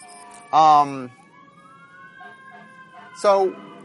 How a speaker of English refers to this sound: Get out of the way of the fire truck.